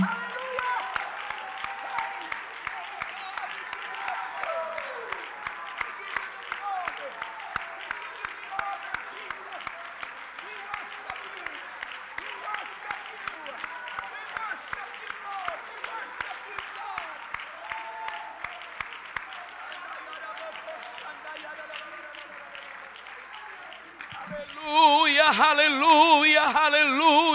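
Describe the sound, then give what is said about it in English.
A church audience claps loudly and continuously while many voices shout and cry out together to Jesus in worship, a dense, sustained roar; near the end a louder, brighter burst of sound swells over the crowd. “Come on, clap as hard as you can clap and shout as loud as you can shout to Jesus and worship him.”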